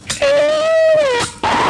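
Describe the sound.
A voice imitates a car doing 180 miles an hour screeching sideways at an intersection, holding one loud, high, strained whine for about a second that rises slightly and then drops away, framed by short breathy noise bursts.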